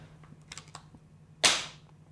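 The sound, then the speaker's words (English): A phone is pulled from its case: a few light, quick clicks of handling, then one sharp, loud snap as the case pops free, fading quickly. No one speaks. “Let me take it out of its case.”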